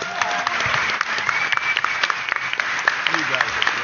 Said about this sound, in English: So another round of applause for them, please.